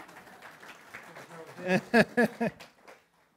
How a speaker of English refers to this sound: Round of applause for today's standing rabbi.